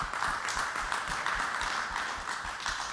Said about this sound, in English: Let's give Mary Anderson a round of applause.